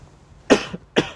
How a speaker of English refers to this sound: I can't mute myself, so I just cough. I'm sorry. It's really bad. I'm hot right now, so maybe that's why. This is really bad. I'm sorry if I cough a lot during this. Oh, God. This COVID shot did not help.